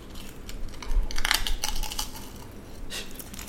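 Crisp, crackly crunching of potato chips being chewed, a burst of loud bites followed by quieter chewing and one more sharp crunch near the end, with no talking.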